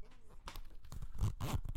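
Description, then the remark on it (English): A zipper on a leather bag rasps in several quick, scratchy pulls, with short pauses between strokes and no talking. “I have a bag, a leather bag with a zipper.”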